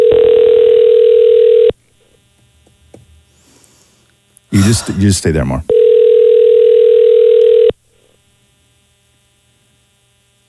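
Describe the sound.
Two long, steady ringback tones of an outgoing phone call that reaches voicemail, each about two seconds, separated by a pause in which a person speaks briefly; the tones are loud with a faint hum beneath.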